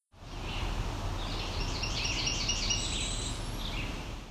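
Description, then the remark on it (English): A Purple Finch sings a rapid, warbling run of bright notes over steady outdoor background noise, the song lasting a few seconds. “This was a Purple Finch.”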